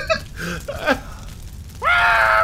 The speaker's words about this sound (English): She just screamed.